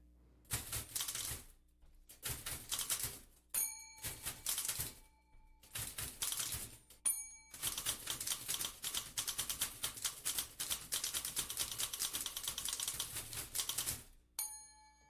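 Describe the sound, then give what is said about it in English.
Several typewriters, including a tenor Smith Corona, played by a band clatter together in rhythmic bursts, keys rattling densely with short pauses between phrases, punctuated by bright carriage-return bell dings, played as a percussive piece of music with no voices. “… is an ensemble for typewriter and voice.”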